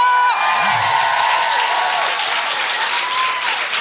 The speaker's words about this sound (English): Thank you to everyone who came. That's you. You can clap for yourselves. A huge round of applause for my co-pilot Sophie Duker!